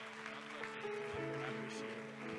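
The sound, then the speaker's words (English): A church audience claps in praise to God at an evening service, a dense, continuous wash of hand claps, with steady sustained keyboard or organ tones holding underneath. No one speaks. “Let's give that hand clap of praise to God tonight.”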